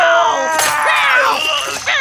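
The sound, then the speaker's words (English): Really Cool Cat yowls and screeches loudly while attacking Lemon Tart Man, a continuous, wavering, high-pitched snarl with harsh bursts that lasts about two seconds, with no talking. “Get him, really cool cat. Not the ears! Not the eyes!”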